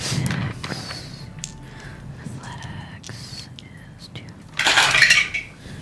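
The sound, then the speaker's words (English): Dice clatter and rattle in a dice tray as a dodge roll (a dexterity athletics roll) is made in a game, a few light clicks early on and a louder, busier rolling burst near the end, with soft whispery voices in the background. “You get to come closer so that I don't have to lean away from the camera every time I want to see what the fuck I just rolled.”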